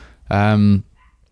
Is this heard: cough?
no